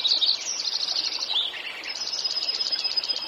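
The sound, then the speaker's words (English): A dense spring dawn chorus of male songbirds singing at first light, with many overlapping high chirps, trills and warbles pouring out continuously, some voices bright, others softer, with no talking. “As early morning light extinguishes the stars, as the first rays of sunlight fill the trees, male birds begin to pour out their songs.”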